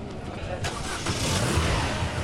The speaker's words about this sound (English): Somebody starts their car. Probably trying to get away from the traffic wardens.